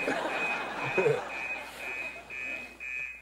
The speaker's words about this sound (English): Is that the fire alarm? Yeah.